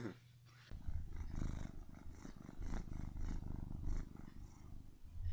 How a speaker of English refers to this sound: Purring by Storm.